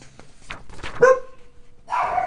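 A dog barks, a sharp bark trailing into a drawn-out whining tone, followed by another loud bark a moment later, with no one talking.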